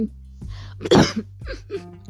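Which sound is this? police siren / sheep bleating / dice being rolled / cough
cough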